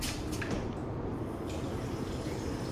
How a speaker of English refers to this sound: Could you give me a little sound effect for that peeing?